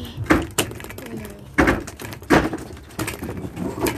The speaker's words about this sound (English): Broke the door. You think I'd break the door?